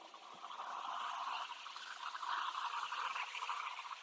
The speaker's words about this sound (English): Tonight's wisdom is listening to this ocean.